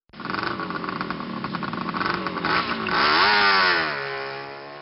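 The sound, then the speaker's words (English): A motorbike engine roars, revving hard with a rising pitch as its rider pulls away heading home, the loud throaty growl sustained for several seconds before easing slightly. “As Queenie jumps on her motorbike and roars off home”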